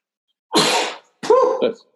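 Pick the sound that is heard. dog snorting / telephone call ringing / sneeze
sneeze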